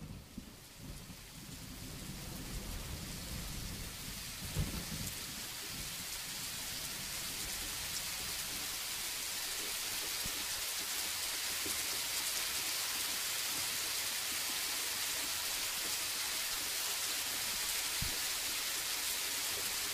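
A simulated Northwest rainstorm, not a real recording of rain or thunder: heavy rain pours down steadily in a dense, hissing wash, with low rumbles of thunder rolling across in stereo and a couple of sharper thumps. No voices, just the storm throughout.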